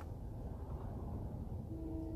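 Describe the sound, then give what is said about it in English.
A train rumbles along the tracks at sunrise with a steady, low, continuous roar, and a faint tonal whine rises near the end. No voices. “beautiful sunrise, and we've got a train that's coming down the tracks.”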